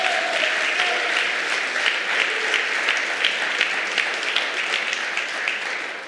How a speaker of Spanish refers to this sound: Si lo cree, dale un aplauso fuerte, Señor.